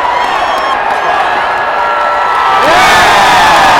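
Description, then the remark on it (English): A stadium crowd roars and cheers for a home run, a dense, loud wall of voices with whoops that swells even louder near the end. “If you can't tell, it's another home run. Very excitable crowd.”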